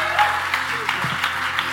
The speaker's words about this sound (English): Hey, why don't you stand up and give this church member, why don't you give them a big hand? Would you do that for sharing their story?